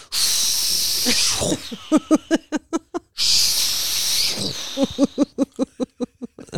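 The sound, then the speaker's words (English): A boy vocally imitates a fighter jet while playing at flying jets: a long, loud hissing whoosh, then a rapid string of about ten clipped, voiced bursts like gunfire. The whole pattern happens twice. “The sound effects and everything. So he is doing nothing but jetting.”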